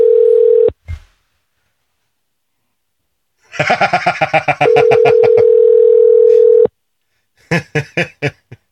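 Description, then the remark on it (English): A steady phone dial tone hums, cuts off, then a quick run of dialing beeps leads back into the tone, followed by a short burst of rapid keypad tones, as someone dials a woman's phone number. “Let's see if she actually answers the phone.”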